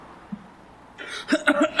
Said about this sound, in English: Oh, boy! Coughing up some of the sadness there,